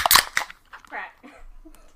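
A beer can cracks open with a sharp, loud snap and a quick second pop, followed by a softer fizzing hiss that trails off over the next second or so.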